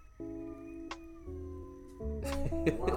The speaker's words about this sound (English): It's almost like, damn, what was that? Cats going crazy outside.